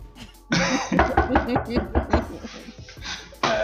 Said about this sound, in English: Knock on wood, if you hear me.